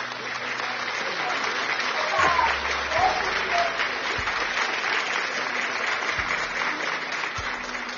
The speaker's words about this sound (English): Give a clap of praise to Jesus